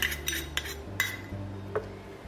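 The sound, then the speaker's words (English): A metal spoon stirs separated tahini paste in a jar, scraping and clinking a handful of times in quick, uneven strokes, over a low steady hum with no one speaking. “Now my tahini paste is a little bit separated, which means the oil has separated from the solid. So I'm just going to give that a bit of a stir first.”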